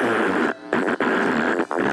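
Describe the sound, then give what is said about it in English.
A voice imitates a fart with a loud, buzzy, sputtering raspberry that runs for about two seconds, broken by a few brief pauses into several rough bursts. “Every time you do a fart, it'll sound like they're rolling over in their grave.”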